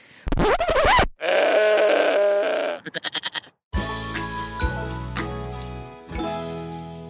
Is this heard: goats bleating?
yes